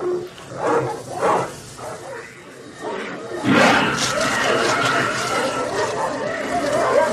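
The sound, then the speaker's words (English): Several dogs in a film scene bark frantically, with a few distinct barks at first and then a dense, continuous outburst of overlapping barking and growling that grows louder and more chaotic. “So all the dogs are freaking out.”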